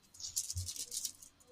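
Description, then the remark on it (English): A rapid, uneven rattle of small wooden clacks from a jointed wooden snake toy being wiggled, fairly quiet with no talking. “welcome back to Wooden Snake ASMR”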